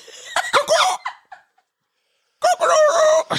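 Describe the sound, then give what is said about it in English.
A man imitates a chicken, making loud, raspy clucking and squawking sounds in two bursts separated by a brief silence, with no other talk. “He's trying to sound like a chicken.”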